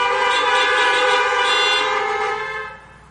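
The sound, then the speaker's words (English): Several car horns blare together as a church audience honks a hallelujah, a loud, sustained chorus of overlapping honks that holds steady for a few seconds, then tapers off and fades near the end. “If you believe that, honk a hallelujah.”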